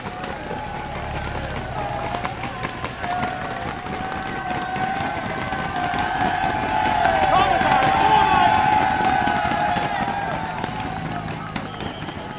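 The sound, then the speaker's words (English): A roadside crowd at a cycling race cheers and roars continuously as a rider comes up alone with five to go, the noise swelling louder toward the middle before easing slightly, with a dense wash of shouting voices and some clapping. “The crowd's going wild here.”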